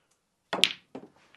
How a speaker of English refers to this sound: Oh, the ball jingled and jangled in the pocket there.